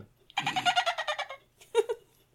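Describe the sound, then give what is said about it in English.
A person imitates dolphin noises, giving a loud, high-pitched squealing chatter that pulses rapidly for about a second, then a shorter squeaky burst after a brief pause. “I don't make monkey noises when I get drunk, I make dolphin noises.”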